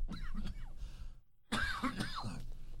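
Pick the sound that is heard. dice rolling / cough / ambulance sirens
cough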